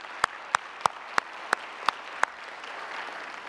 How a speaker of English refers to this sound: Give the crowd, give the choir and the worship leaders, just give them a hand. Would you do that? They've done a great job.